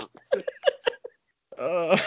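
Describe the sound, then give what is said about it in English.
A voice makes a quick run of short, sputtering mouth bursts, then after a brief pause a longer, buzzy raspberry, a vocal imitation of farting. “But you know, why is it too late when he's chasing down his victims and he's just farting the whole time?”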